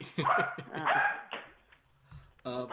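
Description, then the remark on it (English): Dogs bark loudly in a few quick, harsh bursts, with a short lull before one more sharp round of barking. “Now we have crazy dogs that are deciding which ones they like.”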